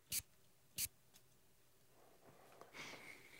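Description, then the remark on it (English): Two quick, sharp hisses of a perfume atomizer spritzing perfume onto a wrist, about half a second apart, followed by quiet rustling and a faint, thin hiss. No one speaks. “Do a spray of Andy by Hamish. Yeah. Spray it on a bit of paper or your wrist.”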